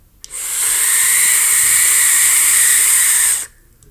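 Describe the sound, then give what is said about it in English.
A loud, steady rush of airflow hiss from a vape RDA atomizer built at 0.08 ohms and fitted on a Titan box mod, harsh and high-pitched, holding evenly for about three seconds before cutting off abruptly. No voices accompany it. “Great performance, really nice flavor, but did you hear that? It sounded like a jet engine. It sounded like a space shuttle ready for launch. It's just so freaking loud.”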